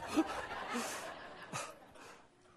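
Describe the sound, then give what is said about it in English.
A puppy makes a few small yips and whimpery snuffles, short and scattered over a low background rustle, with no one speaking. “Down, pup, down.”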